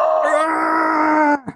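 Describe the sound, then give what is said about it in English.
A loud, raspy scream, the yell of the killer doll Chucky from the film Child's Play, holds one strained pitch for over a second, then breaks off into a short, falling grunt. “Dude, we need the yell from Child's Play, the Chucky yell.”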